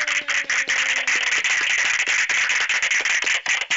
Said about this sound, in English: Okay, you deserve all that applause. Thank you, ladies and gentlemen. Thank you.